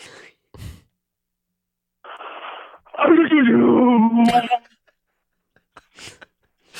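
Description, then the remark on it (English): A person imitates a sneeze in the style of Beethoven, with a breathy wind-up, then a loud, drawn-out voiced burst with a wavering, sung pitch that slides downward before cutting off, followed by short breaths. “Okay, a sneeze in the style of Beethoven.”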